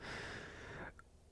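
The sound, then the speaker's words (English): A single drawn-out, raspy burp with a breathy, noisy texture, lasting just under a second, then a tiny brief squeak before quiet. No one speaks. “Burping like a baby.”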